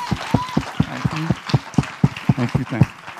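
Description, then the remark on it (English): The ladies of a church audience clap their hands together in a steady, even rhythm, a dozen or so sharp claps over a few seconds, with faint murmuring voices underneath. “Can the ladies give me a hand clap?”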